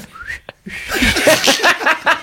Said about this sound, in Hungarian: De könyörgöm, fütyülj már el egy ilyen dolgot, annyira kíváncsi vagyok.